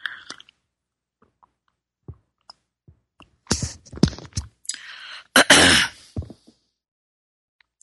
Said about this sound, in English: Time for a sip of my tea. Here we go, my beautiful rainforest tea.